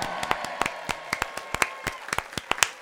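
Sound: applause sound effect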